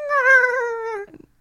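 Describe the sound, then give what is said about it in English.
A voice imitates a little gargling noise: a steady, high, mewing tone that dips slightly in pitch for about a second, then breaks into a brief throaty rattle. “It does like a little gargling noise.”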